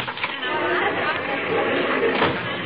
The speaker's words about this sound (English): My, my. Sounds like a tremendous crowd out there, dearie.